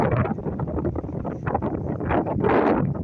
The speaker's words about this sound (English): It's a bit windy, but I just wanted to stop and see these flowers that are growing all the way along the cliffside.